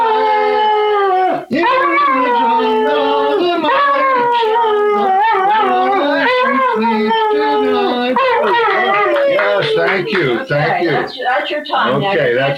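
Remy, a male Australian Shepherd and poodle cross, howls and yips continuously in long, wavering, pitch-sliding notes, loud, singing along with music, for about twelve seconds with only a brief pause.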